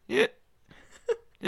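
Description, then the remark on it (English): A voice mimics hiccups: two short, sharp vocal bursts about a second and a half apart, fairly loud, with quieter breathy sounds and a faint chirp between them. “Why are hiccups so embarrassing?”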